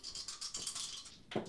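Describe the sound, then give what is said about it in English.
Real dice are rolled for a save and land on 20. They rattle with a quick run of bright, clicking taps as they tumble, ending in a louder clatter as they settle. No voices are heard. “Okay, I need some real dice. Here we go.”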